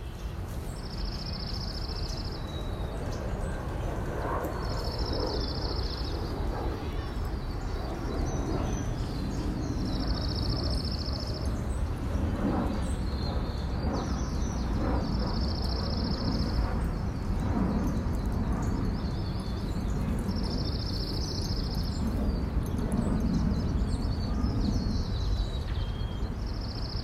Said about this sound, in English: So let's listen to these natural and unnatural birds for a minute